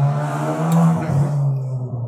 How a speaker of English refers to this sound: My goodness, what is this, like, is this a Motorcycle Central out here? There's one dickhead motorcycles who loves to just go around and represent him. Just around the block, just going like 90 miles an hour. Up the street.